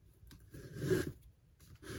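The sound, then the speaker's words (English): Dry rustling and scraping of braille paper sheets being shifted and handled, with a louder sweep in the middle and softer shuffles at the start and end, no talking. “I've got my Braille paper.”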